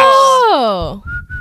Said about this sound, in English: One, I'm the only one at the table that can whistle.